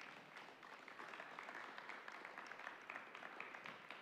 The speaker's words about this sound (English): If you give him a round of applause.